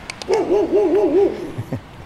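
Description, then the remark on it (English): A dog on a farm gives a quick run of five or so warbling, yelping barks in about a second, followed by a couple of soft thumps, with no one talking. “Here's a farm with a dog.”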